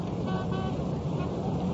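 A steady, fairly loud rumble of road traffic with engines running around a car left stopped in the middle of the road, continuous for the whole moment, with a faint tonal hum like a horn or motor drifting through the noise.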